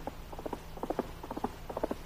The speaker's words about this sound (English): Our story begins as we see a foam-flecked horse pull to a stop at the end of his run. There he is, just on time.